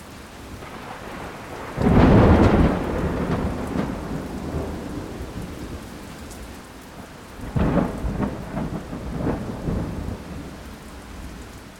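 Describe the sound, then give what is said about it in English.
Steady hard rain pounds a tin roof, driven by swirling wind, broken by two deep rolling thunderclaps, a loud one early on and a second, rumbling peal later that fades slowly back into the downpour. “Storms. It rained for 24 hours, a hard rain.”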